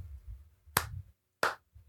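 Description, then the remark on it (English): Two sharp hand claps ring out, spaced well apart, each a crisp bright smack that quickly fades, over a faint low rumble with no voices. “don't clap for him.”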